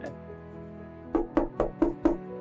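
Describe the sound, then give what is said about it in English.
Five firm knocks on a simple wooden door in a library, in a quick, even rhythm, fairly loud, following a second of quiet. “A knock?”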